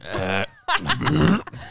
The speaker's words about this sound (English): And I burped in the middle.